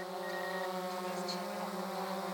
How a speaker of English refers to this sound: Here, to avoid the risk of trespassing, Walk puts a drone up in the air to get a look at the Ed White mine, a giant surface mine once owned by Alpha.